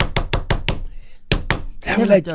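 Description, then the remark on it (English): Sharp knocking on a door at home at 1:30 a.m.: a quick run of five raps, a short pause, then two more, loud, followed by a voice speaking briefly. “Somebody's knocking.”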